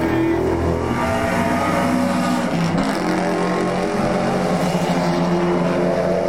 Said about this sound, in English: Top eight cars are Evos, followed by the two BMWs, hotly pursued by the black Sportswagen. Yeah. With the bimodal exhaust.